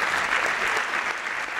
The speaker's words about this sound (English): Today, the Great Energy Debate. Please give a big round of applause for our four panellists.